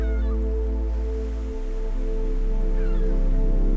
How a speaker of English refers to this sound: The orchestra of waves, birds, and wind playing just for you as the nighttime sky emerges.